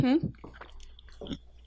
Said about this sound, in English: Sorry, I'm eating.